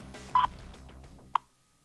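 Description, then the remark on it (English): A U.S. Naval Observatory Master Clock time-signal tone: a steady mid-pitched beep lasting about a tenth of a second, then a single sharp, short beep a second later, over a low rumbling background that fades to silence. “U.S. Naval Observatory Master Clock at the tone, Eastern Daylight Time, 10 hours, 1 minute, 30 seconds.”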